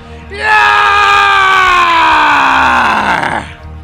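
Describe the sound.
A single loud, sustained roar performed by a human voice, held for about three seconds with a slightly falling pitch before cutting off. Forceful, with no talking around it.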